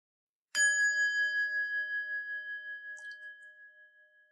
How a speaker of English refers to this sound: The bell rings.